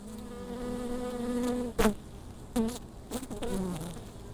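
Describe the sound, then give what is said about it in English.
Bees buzz steadily, a low droning hum that shifts slightly in pitch, broken by a few brief taps or bumps. “And the winter bees, they're so different to the summer bees.”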